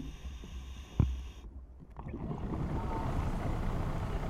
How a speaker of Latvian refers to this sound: Spoku tīkli vēl jāizvelk līdz krastam. Laiva uz priekšu virzās lēni. Laivai tas ir smagi